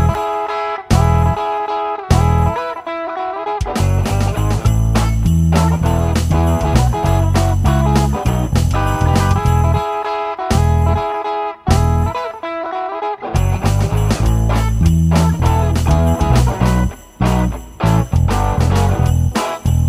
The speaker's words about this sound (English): Can you hear the sleigh bells ringing?